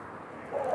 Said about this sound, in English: Bird flying off there, a dog barking.